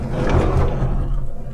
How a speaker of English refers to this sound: Blimey, we must have stopped. I can hear them opening the van door now.